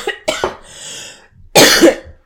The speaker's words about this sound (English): So I'm about to cough.